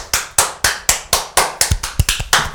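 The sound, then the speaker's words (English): A short burst of hand clapping, celebrating news that J.K. Simmons is signed on to appear in multiple future MCU Spider-Man movies: about ten sharp, bright claps, steady at first and then quickening slightly toward the end, with no voices. “So you can stand up to clap.”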